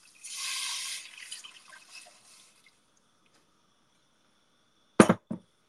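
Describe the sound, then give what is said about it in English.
About 3 cups of broth are poured into a pot for soup with a bright, splashy hiss for about two seconds, then the pouring trails off. After a pause come two sharp clunks, like a container set down. No one speaks. “I'm going to take about 3 cups of water or broth. I use broth. Pour them in there.”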